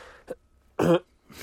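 A few short, harsh coughs: a small one, then a louder, fuller cough, and another starting just as it ends, with quiet gaps between and no talking.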